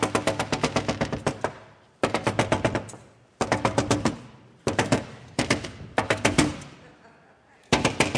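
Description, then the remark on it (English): Rapid, loud knocking on a door in repeated bursts of about eight to ten sharp raps each, with brief pauses between the volleys and no voices. “She went to his door of the judge and knocked.”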